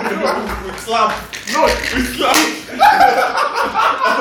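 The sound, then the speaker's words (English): A few sharp hand slaps ring out at uneven intervals, mixed in with people talking and chuckling over the top. “We slap.”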